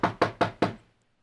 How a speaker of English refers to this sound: Okay, this looks like the house. Here I go, knocking on the door.